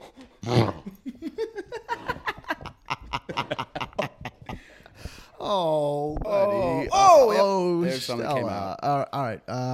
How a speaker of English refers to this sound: dog is like vomiting right now. Oh!